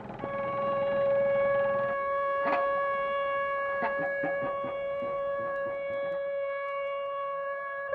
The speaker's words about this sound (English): Found sound uses found objects to give music a different percussive sound, whether it is scrap metal or factory sirens, like in Avramov's composition that you hear now. Often these objects are either recorded on site or sampled.